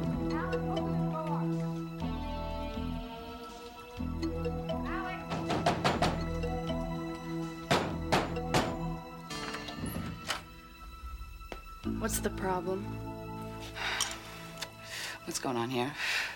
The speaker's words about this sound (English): Did you hear me knocking?